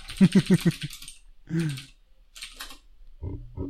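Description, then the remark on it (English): A voice imitates quick keyboard typing while searching on Google, with a rapid burst of four clicky syllables, then a few scattered clacks, fairly loud. “Clicky, clicky, clack. Keyboard click.”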